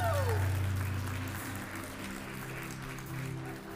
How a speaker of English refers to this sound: We can clap, that's okay. We can clap.